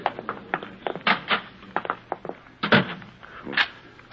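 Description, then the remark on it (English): A door is pushed shut and locked, a run of wooden thumps and metallic clicks and clunks over a few seconds, with no one speaking. “Well, you didn't have to lock the door,”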